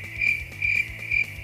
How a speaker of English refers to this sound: And with that, we've got crickets, man.